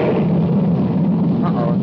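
The engine of Chura's spaceship roars as it takes off and gets away, a loud, steady low rumble with a hissing edge that fills the whole moment without letting up.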